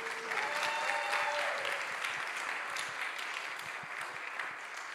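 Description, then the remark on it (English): An audience applauds steadily after a young person's talk about their experience at Move, a dense patter of many hands clapping at a fairly even level that slowly thins out, with a few faint tonal sounds early on. “I'd like more applause, please.”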